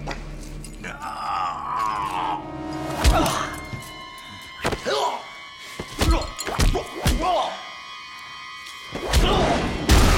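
Heavy thuds and cracking impacts land in an irregular flurry as Morpheus and Agent Smith fight in the bathroom scene of The Matrix, smashing into the porcelain sink, with grunts and a faint sustained tone underneath.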